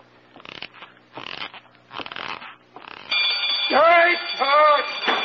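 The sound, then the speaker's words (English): A few rustling, clattering bursts, then a burglar alarm bursts into loud, continuous ringing that carries on to the end, with a couple of wailing, voice-like cries rising over it. “Set off that burglar alarm”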